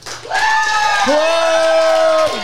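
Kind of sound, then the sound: crowd, audience clapping and cheering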